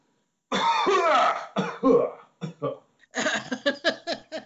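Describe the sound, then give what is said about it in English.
A person lets out a string of loud, exaggerated coughs, starting with a long strained hack and breaking into several short, rapid bursts. “Just coughs?”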